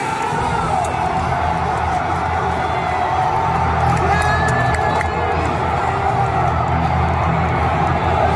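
A loud wrestling crowd roars and cheers without a break in the biggest pop of the night, bigger than for Cody Rhodes, as the glass shatters with Kevin Owens already down; a dense wall of voices with scattered whoops and shouts rising above the steady din.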